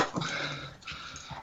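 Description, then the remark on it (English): A dog lets out an excited, high whine blended with short yelping barks at the word squirrel, all packed into about a second and a half of agitated noise, with no talking. “this is the best dog”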